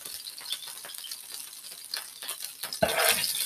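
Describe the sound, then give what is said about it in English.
Hot oil bubbling and crackling in a skillet, a steady hiss of fine pops that swells into a louder, harsher burst near the end, with a brief metallic rattle. No voices. “Hopefully that bubbling subsides.”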